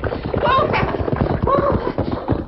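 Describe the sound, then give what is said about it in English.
Hooves clop steadily alongside the rattle of a horse-drawn buckboard approaching hurriedly and stopping on Main Street, with a couple of brief higher-pitched calls cutting through the busy clatter. “He turned in the saddle as a buckboard approached hurriedly and stopped.”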